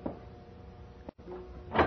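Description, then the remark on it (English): A house's front door slowly swings open at 9:30 with a drawn-out, low creak, briefly breaking off, then a louder scraping rustle as it finishes moving. Fairly quiet, with no voices. “And the front door slowly opened.”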